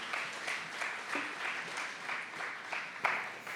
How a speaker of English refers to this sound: Invite the kids to head out now for kids ministry. Can we clap for our kids volunteers?